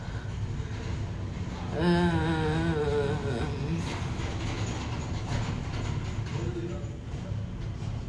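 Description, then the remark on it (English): A train rolls steadily along the tracks with a continuous low rumble and faint rhythmic clacking, and a brief wavering tonal wail rises over it early on. “The soul train.”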